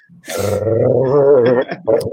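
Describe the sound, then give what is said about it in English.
A dog growls in one drawn-out, wavering rumble lasting over a second, followed by a brief second grumble, with no talking over it. “So you're growling at us.”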